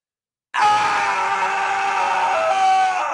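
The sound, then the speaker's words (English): A loud, sustained human scream bursts in after a moment of silence and holds steady for nearly three seconds, strained and raw with no other voices. “All right, so here's my scream.”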